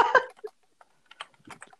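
Rapid typing on a computer keyboard, a quick flurry of clattering keystrokes at the start, then a short pause before more scattered clicks resume in uneven bursts, moderately loud with no talking.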